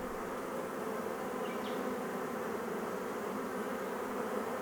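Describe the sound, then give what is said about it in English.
A dense, steady swarm-like hum of many honey bees buzzing continuously around the hives of Blue Hills Honey, a family honey business, at moderate loudness with no voices, a low droning texture throughout. “Right, he loves the bees.”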